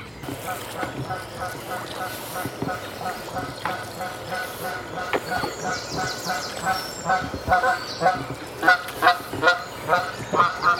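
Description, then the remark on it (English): A flock of geese flying upriver honks noisily and continuously, calls overlapping in a rough rhythm and growing louder toward the end, with a faint low rumble underneath. “They were just flying up river, making a racket and calling for mate now, I think.”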